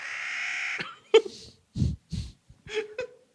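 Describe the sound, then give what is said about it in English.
A crow caws, starting with one long, harsh drawn-out call followed by a string of shorter, rasping caws at uneven intervals, with no one talking. “Oh, bird.”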